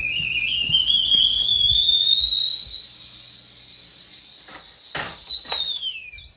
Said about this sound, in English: I think I hear my teapot rising.